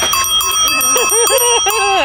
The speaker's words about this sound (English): and I've got a bell that's so loud, it rings like, come here and I'll show you.